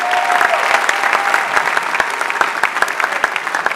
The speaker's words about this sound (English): Let's welcome her with a clap offering.